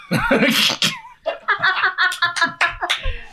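A sharp, breathy sneeze bursts out, then a string of short voiced sounds follows, like muffled chatter or chuckling.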